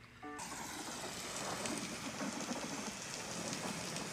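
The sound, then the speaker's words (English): Steady rain pours down on a surface on a stormy night, a dense continuous hiss with scattered droplet patter, even in loudness throughout, with no voices. “It's a rainy, stormy night for Miss Mary”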